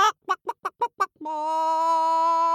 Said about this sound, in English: "What?" screeched the chickens, huffing and clucking and scratching the earth.